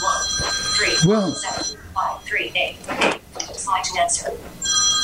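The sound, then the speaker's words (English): A telephone rings with a steady, high electronic tone at the start, pauses while people talk, then rings again at the end, moderately loud under the chatter. “Now … got her calls going. I almost thought it was my phone.”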